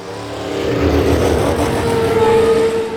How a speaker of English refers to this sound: And now we move on to our next segment, Cue the Cars.